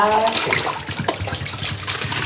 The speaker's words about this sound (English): So there's running water, but it comes from a rain tank on the roof, so you can't drink it, but you can boil it for like washing dishes and stuff.